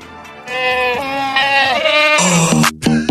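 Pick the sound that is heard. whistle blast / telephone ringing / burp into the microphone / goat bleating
goat bleating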